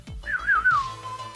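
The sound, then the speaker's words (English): A clear whistled tune from a TV show's theme song, in the style of an old spaghetti western theme: a few swooping notes that slide down and settle into one long held tone, over a low backing. “Oh my god, that's so that whistling, and I mean it goes back to the old western, the old spaghetti westerns.”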